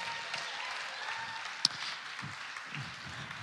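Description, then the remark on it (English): A room full of people applauds steadily to welcome two guests coming up to speak about mentoring, a dense wash of clapping that holds at an even level from start to finish, with one sharp, louder clap standing out midway. “So let's give them a little round of applause.”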